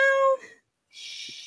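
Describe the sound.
A person imitates a cat with a single short, tonal meow, followed by a brief pause and then a soft, steady breathy hiss.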